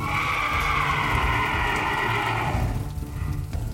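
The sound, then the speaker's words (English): A massive flaming horse rears back and lets out a loud, drawn-out neigh with a strained, tonal quality, holding for a few seconds before cutting off, leaving a low rumbling background underneath. “A massive flaming horse emerges from the fire, rears back, and lets out a loud cry.”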